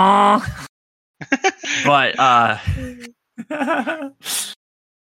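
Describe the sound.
A voice imitates Alonso's Renault Formula 1 car shifting gears, making a few bursts of rising, buzzy vocal sweeps separated by short pauses, ending with a breathy hiss.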